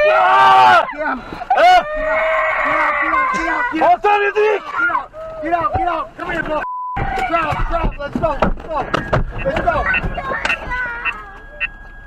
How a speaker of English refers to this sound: Do you hear the kids screaming? The kids crying. Poor kid.